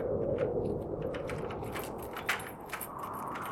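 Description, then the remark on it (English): Keys jingle and clink as someone fumbles through the many pockets of a winter coat at a house door on a bitter, foggy, frosty night, with soft fabric rustling and a few brighter metallic taps over a few seconds, no voices. “Where did I put the keys? Blasted winter coats, with their too many pockets to fumble through.”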